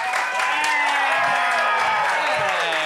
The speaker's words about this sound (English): Oh yeah, guys, get those hands clapping. Get those voices whooping for the very funny Turner Sparks!